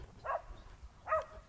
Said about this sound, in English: Oh, those dogs are driving me crazy. Control your dog. Now they're all barking at each other.